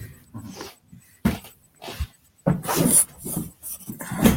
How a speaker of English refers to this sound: We're probably going to hear some dog noises. And if that happens, we may hear my dog noises.